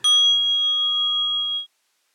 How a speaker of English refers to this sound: So you'll probably get a couple of seconds of the bell and then we'll just breathe in and out together. Three breaths and then I will continue talking.